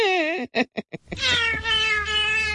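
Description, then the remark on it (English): A cat meows: a wavering meow, then four quick chirpy bursts, followed by a long, loud, drawn-out yowl with a low hum beneath it. No one speaks. “I go, honey, I'm singing to a cat.”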